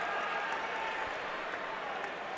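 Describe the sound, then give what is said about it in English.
Steady crowd applause fills an arena at a basketball game as both teams make a mass substitution, a dense, even wash of clapping with a low murmur of voices underneath, holding at a moderate level throughout. “Here comes the mass substitution and the round of applause.”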